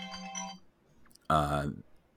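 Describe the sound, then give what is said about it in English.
A small electronic alarm sounds in two bursts: a steady, buzzy tone first, then after a short gap a louder, harsher blare that cuts off abruptly. “My apologies for a small alarm that just went off.”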